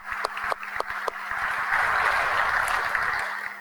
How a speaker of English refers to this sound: So a round of applause for our softball student athletes, please.